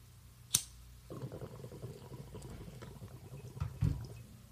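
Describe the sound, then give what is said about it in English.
A sharp click, then a steady stretch of low, gurgling water bubbling in a small green glass bubbler pipe for a few seconds, fairly quiet, with a louder burble near the end. “Yeah, and you got yourself a cute little green one too. Yeah, a little bubbler.”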